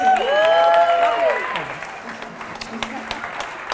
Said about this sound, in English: Let's clap it up for the banana.